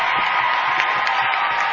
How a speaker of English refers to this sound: And that brings the Bronx cheer up from the Wayndale student body who did not like Rohrbaugh in the first half when he went over to them and egged them on.